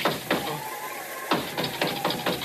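A series of nine sharp knocks, the sacred nine-knock signal of Oompa Papa, rapped in an uneven pattern: a couple of quick raps, a short pause, then a faster run of knocks, fairly loud with no talking.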